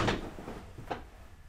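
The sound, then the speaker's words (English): A few dull, hollow knocks or bangs against a door, spaced unevenly, moderately loud, with no voices. “You got somebody knocking at the door.”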